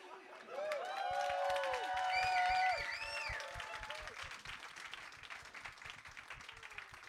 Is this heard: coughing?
no